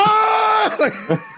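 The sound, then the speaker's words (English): A loud, hearty yell from a man raising a knife holds steady for over half a second, then breaks into a few short, strained vocal bursts. “Appropriate reaction to doing anything of this type of level is just a hearty yell, nigga, raising this knife.”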